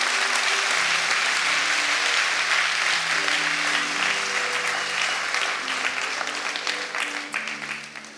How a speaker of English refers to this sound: Put your hands above your heads and clap to the Lord. Clap to the Lord.